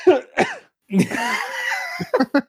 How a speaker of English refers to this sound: Coughing, dude. What's wrong with you?